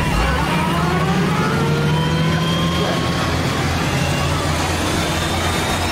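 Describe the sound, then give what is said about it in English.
A Greyhound bus engine revs loudly and steadily as the bus drives, its deep rumble joined by a rising whine that climbs over several seconds, continuous throughout. “Driving Greyhound buses and shit.”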